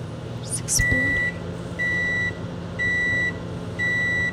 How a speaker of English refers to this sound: Microwave.